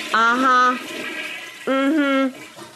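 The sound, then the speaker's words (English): A toilet flush sound effect in two short bursts, each a rushing whoosh with a strong whining, tonal hum riding on top, fairly loud, with no one talking. “And who had her handle on her finger on the handle of the flush?”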